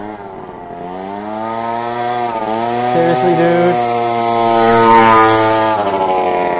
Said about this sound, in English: That sounds like a very loud, nasty motorbike that is not even allowed to ride here.